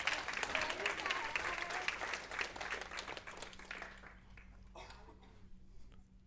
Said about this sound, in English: Y'all clap your hands and say, "I love you, Pastor."